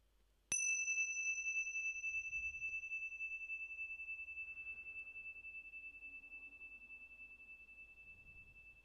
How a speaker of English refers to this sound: So a very, very light ting of the Ting Sha bells. Keeping, staying connected to the present moment.